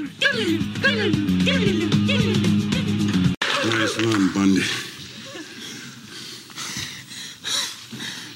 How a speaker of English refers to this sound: He has that scuffle with the spare tire, Bubba Smith, at the end. And they're both lying on the ground at the end, panting.